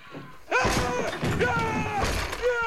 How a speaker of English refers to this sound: Oh, she slammed the door on him. Good on you, girl.